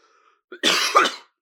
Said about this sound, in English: Sorry, y'all, I'm coughing a lot. I'm getting over a cold. You mean, you feel me? I've been having a cold for a week. I'm at the tail end of it.